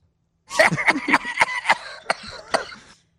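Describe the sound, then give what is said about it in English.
A recorded coughing fit from the day before plays back, the first of a man's two coughs: a rapid run of about half a dozen harsh, raspy coughs, fairly loud, easing slightly toward the end before fading into silence. “So he had two coughs. We're going to listen to these one by one, and we will break them down here.”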